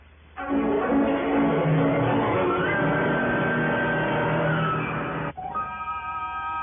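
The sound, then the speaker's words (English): A car engine starts up and revs, its loud, rough roar rising in pitch as it pulls away. After about five seconds it cuts off abruptly to a steadier humming tone. No voices. “Well, you need a car? Here, please, you use mine.”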